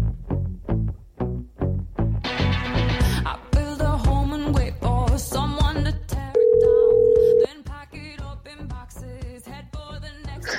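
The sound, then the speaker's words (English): A phone call being placed to a former producer of the show: a steady electronic ringing tone sounds for about a second amid busy, processed musical effects, with rhythmic pulses before it. It is fairly loud. “Let's pick up the phone and give him a call.”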